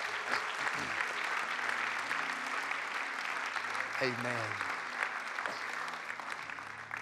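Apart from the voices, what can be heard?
audience clapping hands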